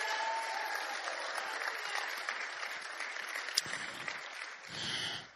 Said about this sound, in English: Come on, you West Virginians, get excited. Clap your hands, shout, do something.